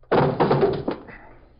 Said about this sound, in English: We'll take a look. He's not in there. Watch it. Kick the door open.